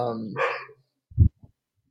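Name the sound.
dogs barking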